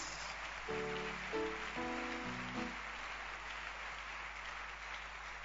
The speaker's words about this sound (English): Hallelujah. Amen. Clap your hands.